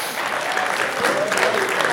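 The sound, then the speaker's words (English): An audience applauds the speaker's 14 years of marriage with steady, dense hand clapping that holds at a fairly even loudness for about two seconds, a continuous patter of many hands with no voices standing out. “I get a hand clap for that.”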